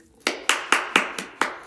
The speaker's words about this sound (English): Y'all better motherfucker clap, because if you don't know nothing about salt, baby, okay?